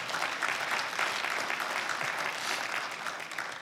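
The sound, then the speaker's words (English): An audience at Grace Church applauds steadily for a few seconds, a dense, even patter of many hands clapping at once with no pauses and no voices rising above it. “That was a good time to clap right there.”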